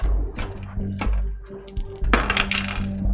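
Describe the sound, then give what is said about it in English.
Dice clatter across a hard surface: a few sharp clicks, then a louder burst of rapid rattling that tumbles on before settling. No one speaks. “Roll again for me.”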